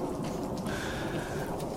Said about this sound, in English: Lads, what TF is that? We're doing the show outside. Can you not hear outside. The rain and the wind?